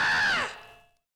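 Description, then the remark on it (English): A single loud, jagged scream, held at a high pitch for a moment before sliding downward and trailing off, with no other voices around it. “That awful, jagged scream. It sounded like it was torn out of somebody.”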